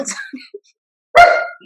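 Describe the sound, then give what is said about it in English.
A single sharp, loud bark with a strained, whiny edge from the dog Cody, asking to go outside, rings out after a few soft murmured vocal sounds and a moment of quiet. “I'm sorry, my dog is asking to go outside, so he's just going to have to be patient, but he's like having a conversation with us too.”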